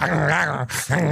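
A dog growls low and steadily, close and loud, the rumble broken midway by a short harsh, breathy snarl before the growl resumes. No one speaks.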